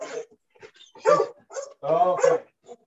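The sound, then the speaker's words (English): A dog named Luna lets out several short, uneven bursts of barking mixed with high, whining cries, with brief pauses between them and no one talking. “And we were talking about this, just like, and Luna wants to chime in now. Hey, come here, dog.”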